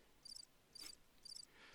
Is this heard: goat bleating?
no